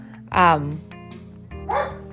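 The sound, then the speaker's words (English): A dog barks twice, a loud sharp woof followed about a second later by a slightly softer second bark, with a low hum in the background. “I told you he was going to bark.”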